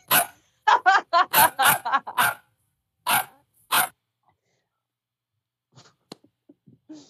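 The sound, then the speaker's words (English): A person's voice imitates a dog barking in a rapid burst of loud yaps, then two more barks after a pause, followed by quiet faint shuffling sounds. “I'm gonna keep barking.”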